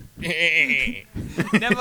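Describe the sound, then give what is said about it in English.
A single loud goat bleat with a shaky, quavering tone lasts about a second, then a voice speaks briefly right after. “Quoth the goat.”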